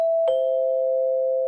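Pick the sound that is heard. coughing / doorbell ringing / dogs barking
doorbell ringing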